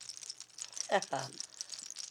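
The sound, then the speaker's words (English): A voice briefly imitates ice-crusted tree limbs clanking together, a short two-part voiced burst around the middle, set against a steady, faint crackling hiss that runs throughout. “close my eyes and I start to shake it, I can see in my third eye a forest at night during the winter, full moon shining light through, and the sound of the trees' limbs that have got ice crusted over top of them clanking together, making this sound.”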